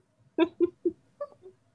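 A cat crying in five short, mewing calls in quick succession, the first three louder and the last two softer and slightly higher, with no voices.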